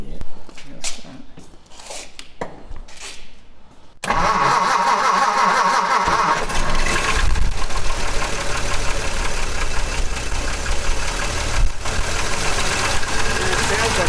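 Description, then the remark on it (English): After a few quiet seconds with faint background voices, the engine of a manual car of about 130 horsepower cranks and catches, then settles into a loud, steady idle rumble that continues to the end. “I'll just start it for you.”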